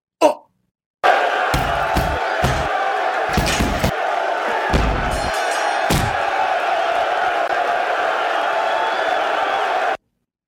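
A short produced radio stinger: a roaring crowd swells continuously while several heavy punch-like slams thud in, one after another, ending abruptly after about nine seconds.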